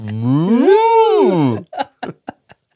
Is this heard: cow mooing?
yes